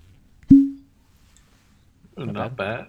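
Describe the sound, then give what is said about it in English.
A single light cork pop as a bottle of Four Roses Small Batch bourbon is opened, a soft hollow plop with a brief ringing tone that fades quickly; after a short quiet pause, someone begins speaking. “It was kind of a light little plop.”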